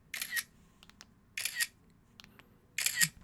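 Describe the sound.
Three crisp electronic camera shutter clicks, a picture-taking sound effect played on a man's phone from the neighbouring stall in a men's restroom, evenly spaced about 1.3 seconds apart, each a bright burst of noise with a faint low murmur underneath. Nobody speaks.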